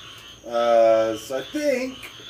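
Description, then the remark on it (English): A few frog croaks ring out: one long, drawn-out call, a short burst of quick pulses, then another brief croak over a steady low background hum. “So I think we're going to call it because of the frogs.”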